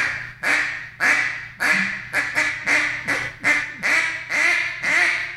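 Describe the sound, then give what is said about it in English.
A duck call blown as single quacks, giving a steady run of about ten loud, nasal quacks, each short and evenly spaced, with no talking over them. “I've killed a lot of ducks with a quack, just a quack, just single quack, and a lot of people don't even use that anymore.”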